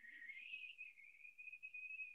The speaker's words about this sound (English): No. Just that over and over again. Me trying to whistle.